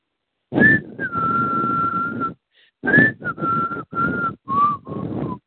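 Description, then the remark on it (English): Someone whistles a short, wavering tune in several breathy phrases, long held notes broken by brief pauses, with no talking. “A faint whistle haunt me.”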